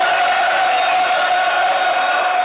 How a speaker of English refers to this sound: Listen to the applause, listeners.